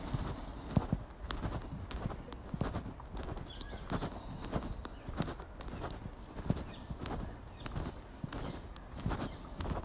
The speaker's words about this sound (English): A person in front of me walking along with a slow and relaxed gait. And just walking past some bollards and a bin.